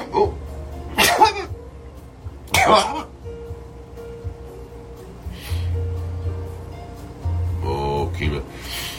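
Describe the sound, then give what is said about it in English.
Two sharp, explosive sneezes, about a second and a half apart, followed by quieter sniffing and breathy vocal sounds, then a brief low murmur at the end. “Oh, I have the sneezes right now. Hang on. Got a sneeze.”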